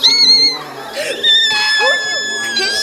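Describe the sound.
A loud, shrill voice pitch-shifted with a Pitch 400 effect screeches almost nonstop for about three seconds, its piercing tone wavering and sliding up and down with brief breaks between bursts.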